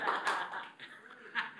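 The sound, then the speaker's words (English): A crowd applauds with a dense, soft patter of many hands clapping. The sound is fairly quiet, swells briefly near the start and again toward the end, and fades after a short burst. “You can clap, that is allowed.”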